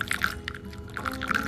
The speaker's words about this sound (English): Then next you'll be adding water, hot water. Okay. The first time you add hot water, we are gonna rinse the cup. Okay.